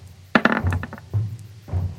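Dice rolled across a hard surface for a dexterity saving throw in a tabletop role-playing game, coming up 12: a quick burst of sharp, rattling clicks, followed by two softer, duller knocks as they tumble to a stop. No one speaks.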